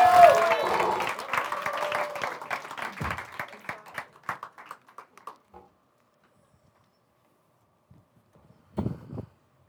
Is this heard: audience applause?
yes